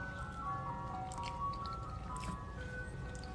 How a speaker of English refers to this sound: Every time I go live, that the ice cream truck goes by.